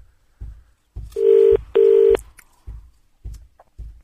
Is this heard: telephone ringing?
yes